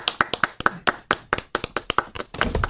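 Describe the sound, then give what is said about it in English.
A few people clap their hands as a man arrives, a quick, slightly uneven burst of sharp, crisp smacks, growing busier and denser toward the end. No one speaks. “We'll clap when he comes.”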